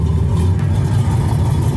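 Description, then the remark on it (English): The engine of a Pontiac Fiero, a fuel-injected mid-engine, two-passenger sports car, runs loud, a deep, steady mechanical rumble with a slight rising rev, heard on its own with no voices. “Pontiac Fiero. North America's only mid-engine, two-passenger production car.”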